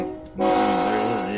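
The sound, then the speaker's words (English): A train horn sound effect, used for the "pain train" in a guessing game, blares in a loud, steady, brassy blast lasting over a second, following a brief lower rumble at the start. No one speaks. “Here comes the pain train.”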